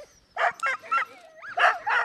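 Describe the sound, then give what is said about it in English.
An excited sled dog being put in harness lets out a rapid series of sharp, high yips and barks, five or so bursts in quick succession, with a thin whine sliding between them. “He gets out online, he gets excited, and he chews off the traces, but I got a different piece of rope put in now, hoping that'll work.”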